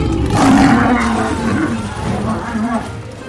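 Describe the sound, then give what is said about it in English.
A lion lets out one long, deep, loud roar, with a rough growling rumble that swells early and holds steady for a few seconds. “I want a real live lion! Her parents got her a lion, but then it ate her favorite servant.”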